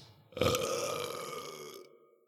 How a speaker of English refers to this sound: See, I never know if that's a real in-studio burp or something you prepared earlier. I love this. Every time I get asked this every time that it comes on, hasn't heard it before. It was a multi-tracked burp, but it was a real burp. Multi-tracked.